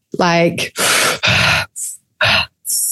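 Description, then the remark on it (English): A person demonstrates rapid rhythmic breathwork breathing: a voiced, groaning start followed by several forceful, breathy in-and-out bursts in quick succession, loud, with no talking. “Or what kind of breath did really you do? No, it was more kind of like...”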